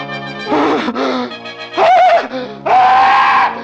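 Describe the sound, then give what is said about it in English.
A man screams in terror, three loud, strained, shrieking bursts, each rising and wavering before breaking off, with no talking around them. “The scream came at last, for Jafe Mourner had seen the devil.”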